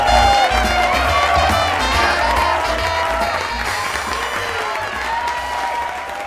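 Sustained audience applause with scattered cheers at a late-night TV show, a dense, steady wash of clapping that stays loud for about six seconds and eases off only slightly toward the end.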